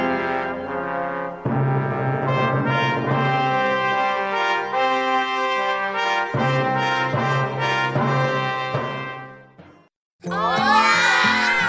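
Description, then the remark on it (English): Young Lutheran children in Mexico City sing out loudly on long, held, pitched notes, then break into a short, excited burst of shouting and cheering at the end. “These are the voices of young Lutherans in Mexico City, children who are excited to learn more about their Savior, Jesus.”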